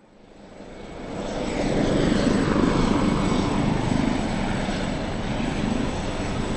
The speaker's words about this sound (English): The men, and it's almost all men, who work on the oil rigs dotted through the North Sea, have a routine. Every time the helicopters fly them back from their 3-week stay, they land at this airfield on the outskirts of the city.